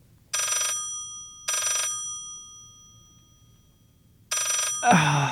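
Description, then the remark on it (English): A telephone rings three times, each ring a bright, buzzy burst of about a second with pauses between, loud over a faint low hum; a voice begins right after the last ring. “But when the phone rings at odd times, you know, what happens if you don't pick up the phone?”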